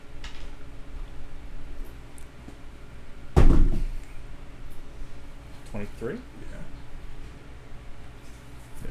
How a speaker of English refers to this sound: Give me a D10 and a D100. I'll roll that. Two.